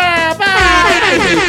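A loud, blaring air horn blast fills the moment, a sustained brassy honk with a brief dip before it swells again, piercing with no talking over it.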